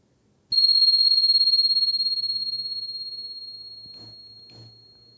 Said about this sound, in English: And here comes the bell.